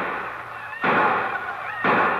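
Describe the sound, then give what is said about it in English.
Two sharp gunshots ring out about a second apart, each followed by a loud, noisy wash of sound with faint shouting voices mixed in: the excited shots and yells of men of Osage setting off in the morning to make the Cherokee run. “The excited shots and yells of the few other men of Osage, who also had decided to make the Cherokee run.”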